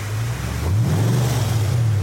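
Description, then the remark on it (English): A loud fan boat engine drones steadily, then its pitch rises as it revs up and holds a strong, rumbling roar with a rushing, wind-like wash over it. “A few days later, after that incident, I was in a kayak when the same individual came up in a fan boat and made more threats.”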